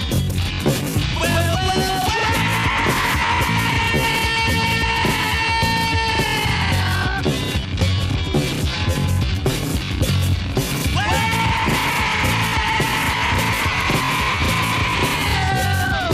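A male rock vocalist screams hoarse, sustained notes over loud, dense band music with pounding drums and distorted guitar, two long howling phrases separated by a brief instrumental stretch.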